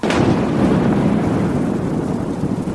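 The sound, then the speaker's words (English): Roaring wind and churning water fill the scene on a dark, stormy night on the shores of Lake Geneva, a dense, steady rumble of storm and waves with no voices, loud throughout. “It was, and this is true, a dark and stormy night.”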